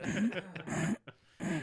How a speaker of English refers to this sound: Let me clear my throat again, guys.